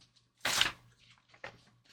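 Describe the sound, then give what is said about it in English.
Paper notes rustle and shuffle: a loud crisp burst of handled sheets, followed by a quieter second rustle and faint papery movement, with no talking. “Shuffling through our notes.”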